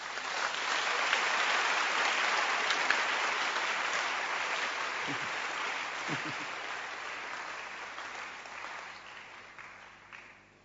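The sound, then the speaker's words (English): A crowd claps their hands in a dense, sustained burst of applause that holds steady for several seconds, then gradually thins and fades toward the end, with a few scattered claps remaining. “Can you clap your hands?”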